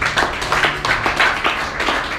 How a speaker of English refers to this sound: Oh, I thought you clap your hands for God.